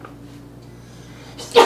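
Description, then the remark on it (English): A single sharp, loud sneeze bursts out near the end, after a stretch of quiet low hum with no talking. “Bless you.”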